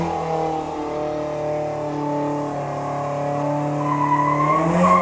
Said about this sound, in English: Some fucking dickhead is doing a burnout in the street, in the rain, as the neighbours are filming it, and then run inside like a bunch of pansies.